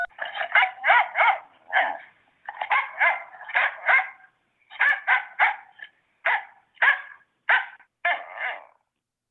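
After a phone keypad tone, a dog barks loudly on the Bark company's customer service phone line, reached by pressing 3, in quick bursts of three or four barks with brief pauses between volleys, continuing steadily for several seconds with no one talking.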